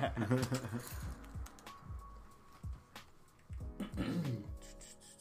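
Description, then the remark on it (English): Scattered clicks and soft knocks from a computer keyboard being passed around and tapped, irregular, mostly under people talking. “Oh, keyboard's being passed.”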